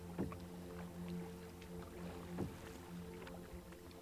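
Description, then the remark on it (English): A kayak paddle dips through clear sea water along a cliffy shoreline in two splashy, swishing strokes a couple of seconds apart, fairly quiet, with a steady low drone and soft water movement underneath. “You've been paddling along, hugging the cliffy shoreline for several hours now.”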